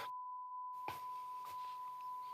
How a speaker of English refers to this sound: But then you awake. Your vision completely white. There's like a ringing in your ears.